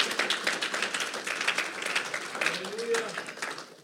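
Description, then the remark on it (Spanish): A church audience applauds the Lord steadily for several seconds after preaching, a dense crackle of many hands clapping at once at moderate loudness, with faint voices mixed in beneath it. “Den un aplauso fuerte al Señor.”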